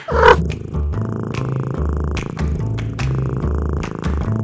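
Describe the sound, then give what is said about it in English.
A cat purrs steadily, a low rumbling rhythm that swells and eases with each breath, continuing throughout without any talking. “Meet Tom and Alley Cat. They're cats. Like literal cats.”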